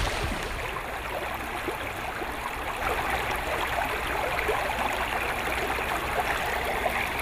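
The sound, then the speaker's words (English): Steady rushing and gurgling of the Colorado River's current in the Grand Canyon, flowing around an 18-foot rowed boat, recorded with a hand-held microphone: a dense continuous wash with faint splashes, no voices. “I'm currently rowing an 18-foot boat and managing to just barely stay in the current with a microphone held up.”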